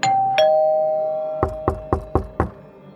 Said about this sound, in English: Around 8:30 a.m., someone was at her front door, ringing the doorbell and knocking.